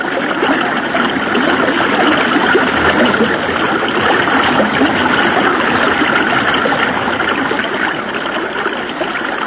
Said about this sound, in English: When I let go of this limb, I'll let the current take us downstream. And trust in God. Here we go.